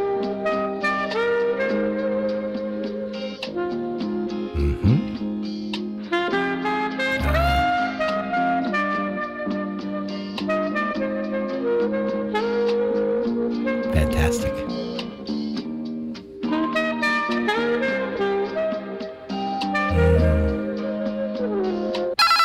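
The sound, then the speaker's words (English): Telephone hold music plays continuously at a steady, fairly loud level while waiting to reach Montreal Canadiens player Max Domi: a busy melodic track with sustained tones and occasional sharp percussive hits, with no one talking over it. “Our on-hold music. Waiting for the Montreal Canadiens.”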